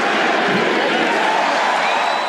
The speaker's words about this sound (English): But, yeah, chanting MVP for Derrick Rose, who had a solid game in this one